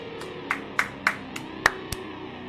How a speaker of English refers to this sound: If I had applause, my applause thing is busted, so we got analog applause for you.